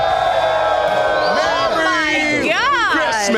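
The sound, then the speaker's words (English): A huge live crowd at a Christmas live show of Drinking Bros roars and cheers continuously, with whoops and shouted voices rising and sliding over a dense wall of noise that stays loud throughout. “Everyone, we've got a huge crowd here.”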